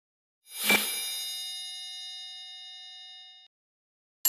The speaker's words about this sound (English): The phone's ringing. Ring, ring. The phone's ringing. Ring, ring.